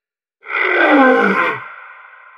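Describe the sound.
A person lets out one loud, rough roar in imitation of a lion, with a deep growling rasp that swells for about a second, then fades into a sustained, ringing tone.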